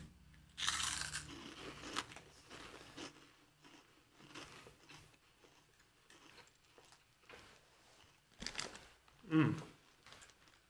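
Crisp crunching of chips being bitten and chewed, with a loud initial crunch followed by irregular chewing noises and another burst of crunching near the end, no talking.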